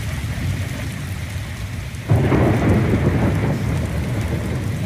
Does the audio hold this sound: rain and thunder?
yes